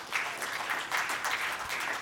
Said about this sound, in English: Won't you clap your hands to the Lord if you believe that?